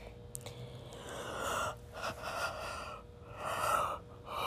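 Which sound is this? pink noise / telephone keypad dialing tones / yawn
yawn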